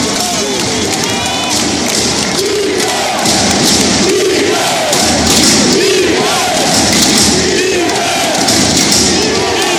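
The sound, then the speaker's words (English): A huge basketball crowd at a Golden State game roars wildly and continuously, a dense wall of shouting and cheering filling a large indoor arena after something happens there, with occasional thuds and surges in intensity. “Doesn't matter if you're a Golden State fan or not, but I just wanted you to see what it looked like when a crowd of people just went berserk, because something that happened in the arena just produced this excitement.”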